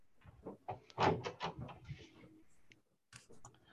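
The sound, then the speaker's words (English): A thick gray metal door, about an inch and a third thick, is handled: a cluster of knocks, rattles and scraping clunks, then a short pause before a few more sharp metallic bumps. “It's actually a pretty thick door”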